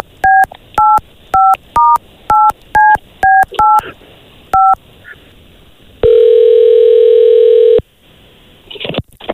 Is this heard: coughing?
no